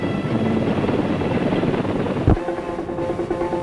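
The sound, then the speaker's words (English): A helicopter gunship flies overhead, its rotor producing a steady, loud, dense thumping drone with a continuous engine whine, broken by a brief sharp crack midway. “It's this kind of teamwork that makes the gunship so effective in combat.”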